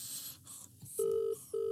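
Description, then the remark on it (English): A phone call ringing out over a speakerphone: two short bursts of a steady electronic ringback tone, the second cut off, after a moment of faint rustling and hiss. No one speaks. “We're going to ring him live. I'm going to ring Timothy. I'm going to put him on speaker”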